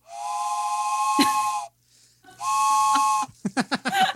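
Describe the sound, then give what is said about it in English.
Two long, loud, steady whistle blasts with a breathy hiss, sounding like a train horn, followed by a quick series of short chuffing bursts. Clear, with no talking. “It's like a train horn.”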